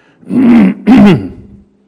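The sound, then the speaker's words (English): Someone clears their throat twice in quick succession, two rough bursts with a brief pause between, the second trailing off into a low rasp. No talking. “No, sweetheart, I don't need a cough drop or anything.”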